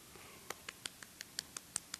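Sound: quiet golf clap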